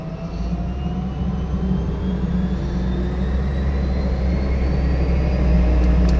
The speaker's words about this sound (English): That's the Pratt & Whitney PT6 winding up. It's a jet engine driving a propeller. Beautiful noise.